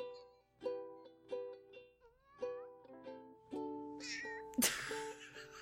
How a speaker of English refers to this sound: Can they hear this? I don't know if they can hear this. Listen to this. This is our cat. You ready?